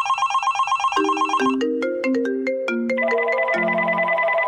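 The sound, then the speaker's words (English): A telephone rings with a bright, repeating electronic tone pattern, shifting through several melodic steps, loud, with no one speaking. “That ringing phone could have an aggressive debt collector on the line.”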